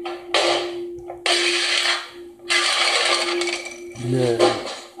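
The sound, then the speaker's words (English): A pencil box crashes down and bursts open, its contents clattering and rattling in several loud bursts over a steady electrical hum, with a brief voice near the end. “The pencil box broke open.”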